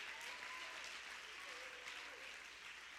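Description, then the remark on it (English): An audience claps hands in a dense, sustained burst of applause that stays steady and fairly loud throughout, with faint voices rising now and then beneath the clapping. “Somebody clap your hands like you mean it.”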